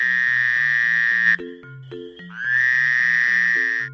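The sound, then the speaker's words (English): Long, buzzy frog-like croaks, loud and drawn out, with a short pause between two stretches, set over a bouncy stepping bass line of music. “Frogs, they croak.”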